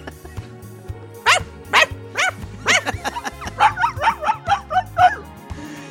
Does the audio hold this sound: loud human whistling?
no